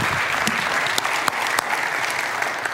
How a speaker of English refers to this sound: Can we clap for the Lord this morning, church? Can we clap for him? Come on.